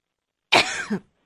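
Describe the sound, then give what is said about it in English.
A single harsh cough, fairly loud, ending in a short throaty rasp, with silence before and after and no talking. Someone coughs in a studio that has suddenly become about 90 degrees, which is aggravating their allergies. “It suddenly got about 90 degrees in here in the studio, and that's what's making me cough.”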